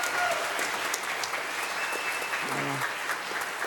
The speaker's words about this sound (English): Thank you all. Give them another hand clap for being with us.